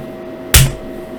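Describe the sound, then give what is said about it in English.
A single hard, involuntary slap lands on a forehead, a sharp, loud smack with a dull low thud beneath it, fading quickly into a quiet background hum. “For the audio only people, that was a involuntary, much harder than expected slap on my forehead.”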